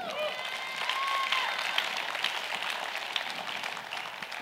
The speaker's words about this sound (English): Come on, if we're going to clap, let's clap.